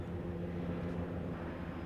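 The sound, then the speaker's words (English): An aircraft passing overhead, its engine a steady low droning rumble with a faint tonal hum, holding an even loudness throughout with no voices. “Earlier today I had fire trucks and stuff, so this is a different form of transport from above.”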